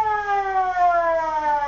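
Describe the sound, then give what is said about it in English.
A fire engine siren wails in one sustained, steady tone whose pitch slowly glides downward, loud and rich in overtones, with no voices over it. “He's a three-alarm fire and a fire chief, too.”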